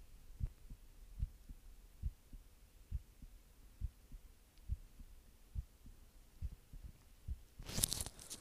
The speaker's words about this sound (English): Like, I don't know, can you hear my heartbeat? Let's see. Where is it? I guess we're like on it. Can you hear it?